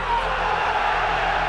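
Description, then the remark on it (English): A packed arena crowd screams "fuck the Mayweathers" together on a count of three, one loud, sustained roar, a dense wall of yelling voices that holds steady for the whole moment without a break. “On the count of three, I want everyone in this arena to scream at the top of your lungs, fuck the Mayweathers!”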